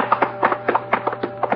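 Two people hurriedly stumble up wooden stairs, heavy footsteps clomping in an uneven rhythm, about ten thudding steps in quick succession, over a faint steady hum.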